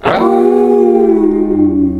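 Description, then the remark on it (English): A loud wolf howl that starts high, slides down and then holds a long, steady tone for about two seconds, with a slightly processed, distorted edge and no talking. “You howl.”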